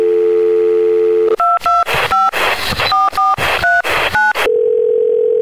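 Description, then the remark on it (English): A steady telephone dial tone hums, then a rapid run of about ten keypad beeps in quick succession, with noisy line static between them, before a steady tone returns, as someone dials out to the Movie Zone phone hotline of the Larry H. Miller Megaplex Theaters. “Let's dial out to the Movie Zone phone hotline.”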